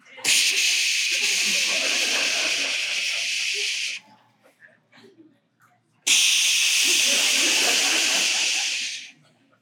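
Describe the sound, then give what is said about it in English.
A dial-up internet modem connecting: two loud, steady bursts of harsh, hissing static, each lasting about four seconds, separated by a brief pause with faint, scattered noises. “That yes, it did at one point in time. It went something like this.”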